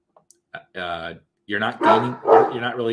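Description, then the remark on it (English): Dogs bark: a brief yip, a drawn-out bark, then a longer, louder run of overlapping barks and howl-like yelps. “The dogs agree.”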